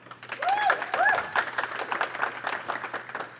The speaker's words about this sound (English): All right, so it is up to y'all, the audience, to decide which one progresses in the March Madness bracket. We will go by applause, yeah. I guess. All right, so if you want … to go forward, please clap.